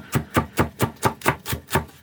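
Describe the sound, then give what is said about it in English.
A knife rough-chops leeks, halved lengthwise, on a cutting board for soup in a steady, brisk rhythm, about eight crisp thuds in two seconds, clear with no talking. “I bisect them long ways, and then just rough chop.”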